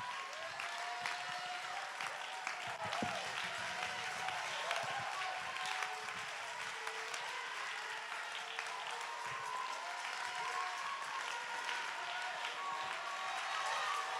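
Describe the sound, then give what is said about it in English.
A large crowd claps and cheers continuously, a dense wash of applause with scattered shouts rising over it, steady and fairly loud throughout, with no single voice standing out. “Come on, let's do it like the angels. Let's clap our hands. Let's lift our voice.”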